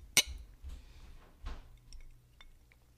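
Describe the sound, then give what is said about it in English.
Whiskey glasses clink together once in a sharp, bright toast, followed by a few soft knocks and faint, high ringing tings as the glasses settle. No voices. “Okay, by the way, get the fuck in here and cheers me really quick.”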